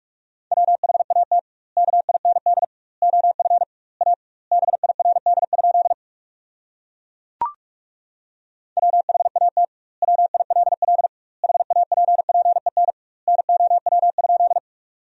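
Rapid Morse code practice tones at about 45 words per minute, sending sentences built from the top 400 words with double word spacing: a steady mid-pitched beep keyed in quick bursts of dots and dashes, with word gaps and one sharp click midway, no voices.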